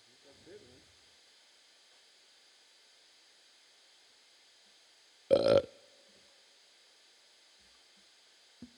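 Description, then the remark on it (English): A single short, loud burp bursts out suddenly against a quiet background with a steady faint hiss, preceded by a soft rustle and followed by a brief click near the end. “Look at that burp. That burp registered right on there. It's a solid burp.”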